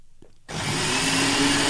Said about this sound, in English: And now I'm going to blend this.